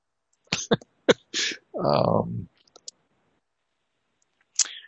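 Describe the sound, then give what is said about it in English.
A few sharp breathy bursts lead into one loud, voiced sneeze, followed by quiet and a brief faint noise near the end. “Bless you, Gesundheit.”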